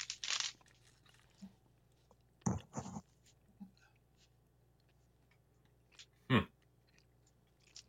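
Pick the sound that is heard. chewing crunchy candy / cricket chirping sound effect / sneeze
chewing crunchy candy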